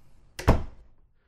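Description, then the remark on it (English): A door shuts with a quick double impact, a light click followed by a solid thunk, fairly loud, then quiet. “Just shut the door behind you.”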